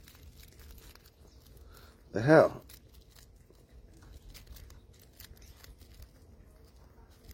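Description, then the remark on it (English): A single quick rip of thin rolling paper, a brief crisp burst amid quiet room tone, with a man muttering briefly. “Sometimes these rolling papers are fucking garbage, yo.”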